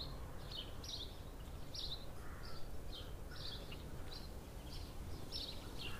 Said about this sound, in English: Seemingly not yet exhausted from the pre-theatre performance, the birds continued to sing wherever we went.